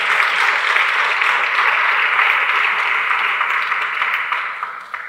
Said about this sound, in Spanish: Dale un aplauso fuerte al Señor.